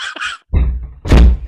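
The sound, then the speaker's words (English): A door is pushed shut with a heavy thunk, followed by a second solid knock as it settles into the frame, with brief rattling in between. “Let me shut the door.”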